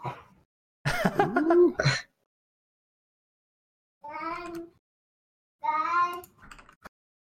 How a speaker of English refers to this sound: Bring on the cat! Oh. This is my cat.